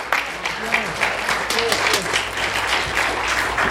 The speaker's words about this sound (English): Please give a big, gigantic round of applause to Geek Brother number one